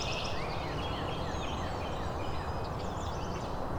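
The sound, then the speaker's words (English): A northern cardinal and a scarlet tanager, the tanager right overhead, sing amid a busy chorus of other birds including many warblers, with overlapping whistled phrases and chirps above a steady rushing background noise; no one speaks. “It's the northern cardinal and scarlet tanager singing.”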